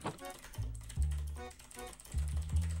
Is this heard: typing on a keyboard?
yes